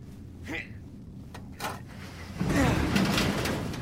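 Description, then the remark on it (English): An elevator door on an elevator shaft is forced open: a couple of short metallic scrapes, then a longer grinding, rattling slide over a steady low rumble, moderately loud. “Would you open the door already?”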